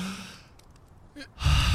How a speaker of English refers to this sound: Your eyes go wide open, and you gasp, as if breathing for the first time.